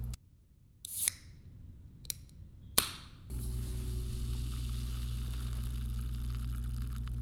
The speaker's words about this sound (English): I'm talking about a can, because okay. I'm talking about the sound of like the pop tab that it makes when you open it.